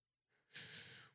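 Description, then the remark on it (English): A single yawn: a soft breathy intake that swells into a loud, airy exhale lasting about half a second before cutting off, with no talking around it. “Me yawning.”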